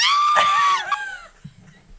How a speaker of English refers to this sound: It was just a 1 second scream. And I was like, what happened?